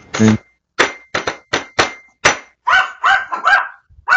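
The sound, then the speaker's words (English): A string of sharp knocks on a door in a steady rhythm, then a cluster of quick dog barks that follow the same beat. No one speaks. “Did the dog just bark in time to the song?”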